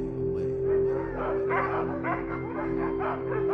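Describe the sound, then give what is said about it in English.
Dogs bark and yip in quick, overlapping bursts throughout, a restless chorus over a steady low hum, with no one talking. “Dogs roam in packs.”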